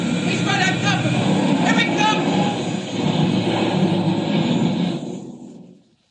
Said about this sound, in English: There. I crashed the planes. Jumped clear.